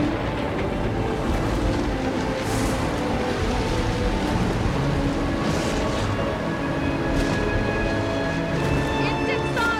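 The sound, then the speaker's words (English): A big thunderstorm outside a cave: heavy rain roars steadily, layered over a deep, continuous low rumble that holds at an even loudness throughout, with no distinct thunderclap breaking through. “So Trip's going out outside the cave there in this big storm.”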